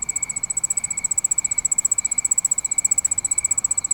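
Crickets chirp in a fast, unbroken pulsing trill, high-pitched and steady throughout, with a faint hiss of night ambience beneath and no voices.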